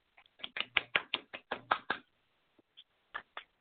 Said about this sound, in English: I'm clapping too. Shout out to y'all.